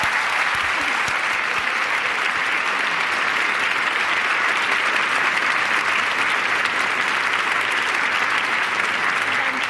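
An audience claps steadily and loudly for nearly ten seconds, a dense, even wash of many hands with no pauses and no voices standing out.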